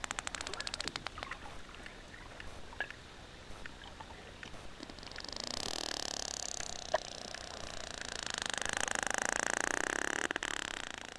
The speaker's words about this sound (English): And one of the reasons is that unlike the humpback whales that sing, and sometimes it's only one sex that's singing, the sperm whales use these clicks to communicate, and a variety of clicks in different fashions with tempos and beats.